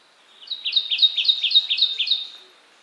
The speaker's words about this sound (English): the Kentucky Warbler's mnemonic is chirree, chirree, chirree